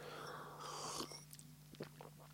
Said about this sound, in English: I'll have to have another little sip of water.